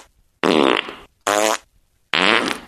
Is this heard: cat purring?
no